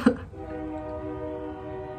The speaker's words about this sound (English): Can you hear the train?